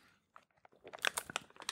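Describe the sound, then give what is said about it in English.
Foil drink pouches crinkle into the microphones in a brief, faint burst, a few scattered crackles at first, then a denser run of sharp, bright, irregular crunches with no one speaking. “You guys, our jammers are really creaking in the mics. Yeah, well. We chose like a fucking tinfoil drink.”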